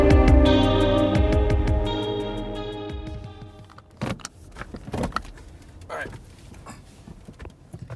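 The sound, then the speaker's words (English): Sustained musical tones fade out, leaving the hushed quiet inside a car just parked on arrival at a rehearsal, broken by sharp clicks, soft rustling, and a brief jangle of keys. “I am sitting right now in my car.”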